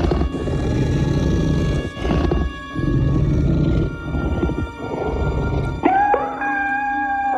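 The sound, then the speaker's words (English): A loud, growling alien creature roar rumbles in several long surges, then abruptly shifts into a high, rising kitten-like mew at the end. No one speaks. “Creature sounds.”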